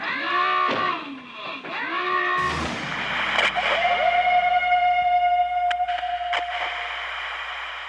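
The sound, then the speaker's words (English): A loud electronic emergency public service announcement alert sounding from devices: harsh, buzzy warbling tones sweep up and down, then a burst of static gives way to a steady, piercing high tone with a distorted, broadcast-like quality. “This public service announcement that just screamed from all of our devices.”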